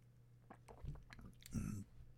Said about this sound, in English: Excuse me, I gotta take a sip of water here.